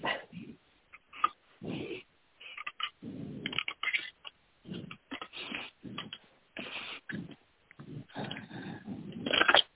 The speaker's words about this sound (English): I'm shuffling, making shuffling sounds here.